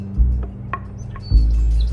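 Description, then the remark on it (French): A few thin, scattered bird chirps and short high whistles, fairly faint, set against a heavy, constant low rumble that swells near the end. “Mon doux chant d'oiseau, mon doux chant d'oiseau”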